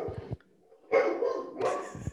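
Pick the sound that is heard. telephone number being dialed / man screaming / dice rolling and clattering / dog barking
dog barking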